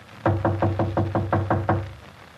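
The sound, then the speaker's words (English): Eight firm knocks on the partly open wooden door of apartment 5D, Mr. Jenkins's apartment, in a quick, steady rhythm, fairly loud, each with a dull hollow thud. No voices accompany them. “I'll knock again.”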